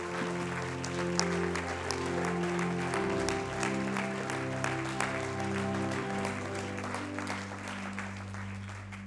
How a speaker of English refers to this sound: Would you one more time clap your hands and give him praise right now?